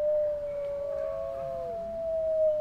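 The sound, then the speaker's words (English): A wolf pack, a family group of up to 12 animals, howls together, one long steady howl held throughout while other voices glide and waver above and below it, forming a sustained, moderately loud chorus with no talking. “They live in family groups of up to 12 animals, howling together, and it establishes cohesion.”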